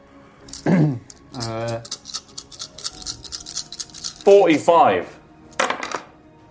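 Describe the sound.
A handful of about 45 dice clatters across a tabletop in a dense burst of sharp, rapid clicks, while voices talk and exclaim over the rattling.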